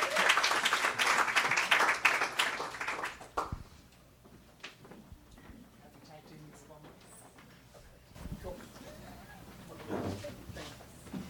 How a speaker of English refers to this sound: Well, baskets are done, so let's give a big round of applause and welcome.